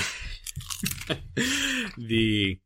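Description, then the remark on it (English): Several sharp crunches in quick succession as someone bites into a crisp snack, followed by a drawn-out vocal sound. “… might be crunching in your ear in a second or two.”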